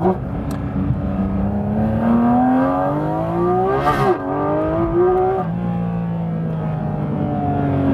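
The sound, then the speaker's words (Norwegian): A car engine revs hard and accelerates, its pitch climbing steadily, dropping briefly at a gear change, then rising again; loud throughout, with a faint whoosh at the shift. “Og setter deg bak rattet I en bil som det her, og innser, oi, dette jo faktisk veldig, veldig gøy.”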